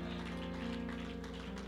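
Dense, continuous clapping from many hands at a church service blends into a steady crackling wash, layered over sustained musical tones that hold at an even level throughout.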